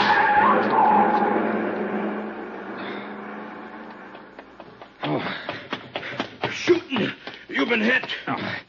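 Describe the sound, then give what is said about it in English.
A long black coupe with a lot of chrome, its lights off, roars off with squealing tires, loud at first and then fading over several seconds as it pulls away, before people start talking. “See the car. The one that just gunned out.”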